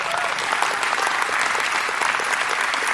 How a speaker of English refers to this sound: Now, let's give Jesus a big round of applause right now.